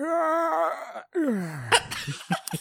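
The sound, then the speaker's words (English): A person makes a long, voiced yawn: a sustained wavering tone, a brief break, then a sliding, falling groan that ends in a few breathy huffs. “It just sounds like a yawn.”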